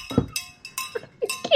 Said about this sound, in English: Oh, you don't like the wee bell, do you?